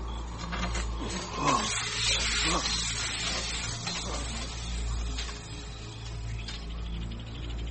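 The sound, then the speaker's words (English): A snake hisses in a long, steady, breathy rush that runs unbroken for several seconds, fairly loud, with slight swells in intensity. “Just don't move. Snake.”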